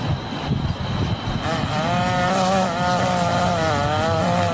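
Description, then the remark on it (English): A small two-stroke engine of a weed whacker drones steadily, its pitch revving up and wavering after the first second, with a buzzy high whine over a rough low rumble. “It's actually a weed whacker.”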